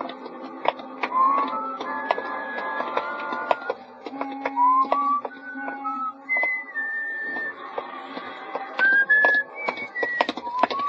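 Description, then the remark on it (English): Someone whistles a clear, meandering tune while walking along a street late at night, steady footsteps tapping along underneath. No one speaks. “Just sort of whistling to myself and walking along the street.”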